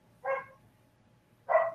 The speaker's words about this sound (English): Okay, and now my dogs have decided to start barking as I'm going into the next question.